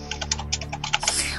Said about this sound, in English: Oh, I hear typing.